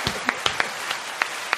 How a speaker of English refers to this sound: You got fake applause now? Oh, that's fire. You ain't get that for you, though. Nah. That's crazy. I appreciate it. You don't even get the fake applause.